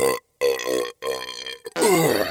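A long, loud, croaking burp rolls out in several drawn-out pulses, unbroken by talk, ending in a rougher, raspier stretch.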